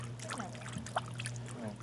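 Soft waves lapping and trickling continuously at a gentle, steady level, with a low constant hum underneath and a brief splash near the middle.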